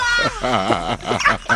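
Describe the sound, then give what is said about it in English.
A dog barks and yips, a quick run of short, high-pitched, whiny vocalizations following one another with barely a pause, fairly loud throughout. “He's dog. A character.”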